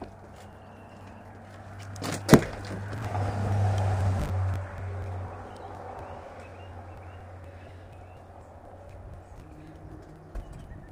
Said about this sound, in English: There are some cars, as you can hear.